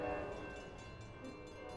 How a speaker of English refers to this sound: This was probably the equivalent to an audience in the 1800s, sitting before a large screen and seeing a life-sized train rushing towards them.